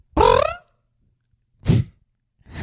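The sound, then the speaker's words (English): A person vocally imitates a cat's purr: a short, loud, voiced rolling sound, then two brief, rougher bursts after a pause. No words are spoken. “That was me purring.”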